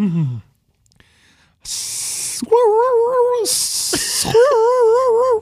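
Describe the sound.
A person imitates an odd hissing, whirling noise heard behind a man reeling in a fishing line, twice: each time a loud breathy hiss gives way to a wavering, warbling whistle that rises and falls in pitch before cutting off.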